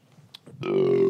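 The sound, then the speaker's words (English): A loud, drawn-out burp starts abruptly after a brief low mumble and holds a steady, deep, buzzing pitch for about half a second. “That was actually one of the best burps I've heard you do.”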